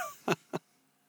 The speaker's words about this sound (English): You get my breathing like.